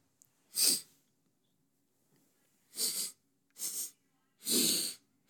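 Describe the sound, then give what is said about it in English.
A person sniffles rhythmically through the nose, sniffling out a short song in four sharp nasal bursts with pauses between them. Fairly loud, with no talking. “Did you get the song that I just sniffled?”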